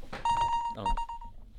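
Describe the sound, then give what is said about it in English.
Two quick electronic quiz buzzer beeps as players show off their buzzers before a quiz game, each a steady held tone of about half a second, fairly loud, with a brief burst of voice-like sound just before each one. “Do you want to show off your buzzers, lads?”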